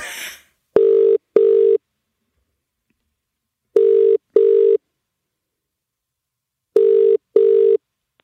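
A phone ringback tone, heard while calling a woman, after a brief burst of noise at the start: three double-pulse rings, each pair of buzzy mid-pitched tones followed by a pause of about two seconds. No one speaks.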